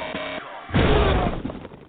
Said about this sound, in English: Whoa, geez, what was that? A hiccup at the same time.